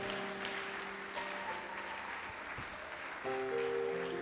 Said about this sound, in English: Somebody clap your hands and say a big amen.